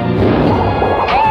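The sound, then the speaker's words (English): The cannon sound effect of a Fisher-Price Great Adventures toy pirate ship: one loud, crunchy electronic blast with a buzzy, tonal ring, filling just over a second without any voices. “this was a Fisher-Price Great Adventures pirate ship that kind of happened before the Imagine Next line”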